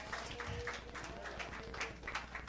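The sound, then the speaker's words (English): An audience applauds, a steady, dense patter of many hands clapping at once, fairly soft and even throughout with no clear individual claps standing out. “Give him another clap off.”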